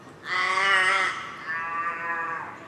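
Two drawn-out, harmonic croaking calls from a forest raven, deep and resonant, the first louder and the second slightly softer, with no talking.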